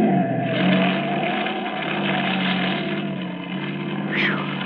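A car engine roars loudly and steadily in a continuous rushing drive past, with a short tire squeal near the end as the car skids on a road made slippery by an overturned oil truck, almost skidding into the listeners' car.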